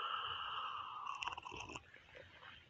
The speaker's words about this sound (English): Have a sip of coffee here, hold on.